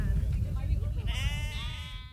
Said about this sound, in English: his sheepdog, Holly, corrals the sheep and moves them in different directions.